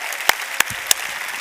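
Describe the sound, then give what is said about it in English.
Audience applause, a dense steady wash of many hands clapping, with three sharp, louder claps popping out at even intervals. No voices are heard. “let's give those three ladies, and please forgive me if I'm missing somebody, a big hand.”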